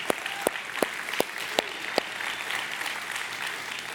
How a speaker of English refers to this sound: And I just think it's worth it for us to take a moment and honor them. Could we just honor them and give them a hand clap?